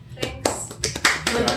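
A short burst of applause from a small group, quick overlapping claps forming a bright, crackling patter that swells and ends after a moment or two.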